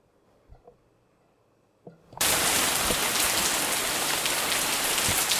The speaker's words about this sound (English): So that is the rain. It's been a really clear day and lovely, and now we've got huge big tropical raindrops.